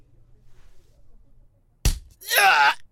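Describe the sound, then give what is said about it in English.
A single sharp, heavy impact of a hard punch to the stomach lands out of near silence, followed immediately by a loud, strained groan or cry of pain. “And punches me hard in the stomach.”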